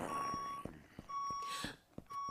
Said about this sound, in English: Great thinking with a backup alarm. That was such a smart move.